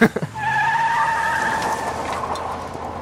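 A sports car's tires squeal loudly in a sustained, high-pitched screech lasting over a second, with engine rumble underneath, then fade into rushing road noise.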